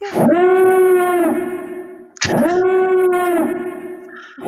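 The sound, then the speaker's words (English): Two loud, blaring Imperial Klaxon alarm blasts, each a sustained buzzy horn tone about two seconds long with a sharp attack, a brief swoop up in pitch, then a steady hold. “It sounds like a submarine. Dive, dive. No, the Imperial Klaxon.”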